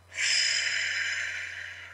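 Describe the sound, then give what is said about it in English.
A single deep belly breath, in through the nose and out through the mouth as if through a straw, airy, rising quickly and then easing off slowly over a couple of seconds, with a faint steady hum underneath and no talking. “Breathing in through your nose, out through your mouth, like you're breathing through a straw.”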